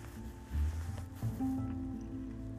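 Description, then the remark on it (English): A few wet splashes and squelches of children's feet stamping in shallow rain puddles on a wet morning on the way to school come in irregular bursts over a low, steady droning hum. No one speaks. “It's wet this morning. Kids splash in puddles as they bounce on the way to school.”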